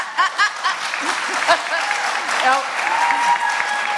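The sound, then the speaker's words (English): A crowd claps and cheers steadily, dense applause with scattered whoops and shouts rising above it throughout. “You can cheer all you want, but it's not how it's made up.”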